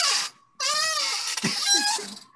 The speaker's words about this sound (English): Jesus. Are you serious? Did you pick a louder fucking chair? Yeah. Go get a different chair.